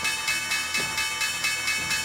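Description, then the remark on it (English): The NASDAQ stock exchange opening bell, rung by CEO Adena Friedman alongside former NASDAQ CEOs to celebrate its 50th anniversary, rings steadily, its bright metallic tone pulsing in a quick, even rhythm for the whole stretch, fairly loud and with no voices over it. “There's the opening bell, guys.”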